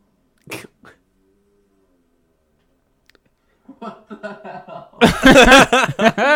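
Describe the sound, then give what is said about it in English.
In a played video, a dog lets out a short, sharp fart near the start, with a faint second puff right after; after a pause, people talk and break into loud laughter. “It's just a dog farting.”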